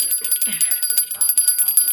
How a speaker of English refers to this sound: I have a happy bell when things get weird.